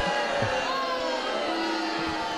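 A dense, steady wash of crowd noise fills the whole stretch, with cheering and occasional rising whoops and shouts poking out above the roar, fairly loud.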